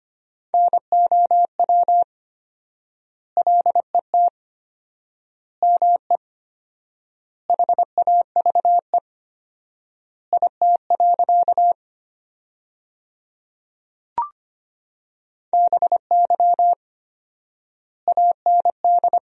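Morse code sent at 25 words per minute with fourfold word spacing, keying sentences built from the 300 most common words: a steady mid-pitched beep keyed in quick dots and dashes, grouped into words with long silences between them, plus one brief click.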